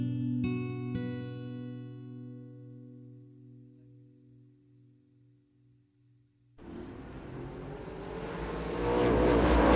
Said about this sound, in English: Live the passion of the Volkswagen Type 4 engine. Let it flow through you.